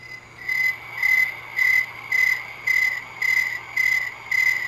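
A cricket chirps in a steady, repeating rhythm, about two pulses per second, each a shrill high-pitched trill, over a faint low hum. No one speaks.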